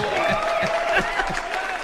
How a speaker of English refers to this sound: Funny. Everybody cheer! Yay!